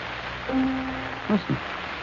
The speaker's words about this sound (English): Listen. What is that? Well, it sounds like a little child at the piano. Yes, it does.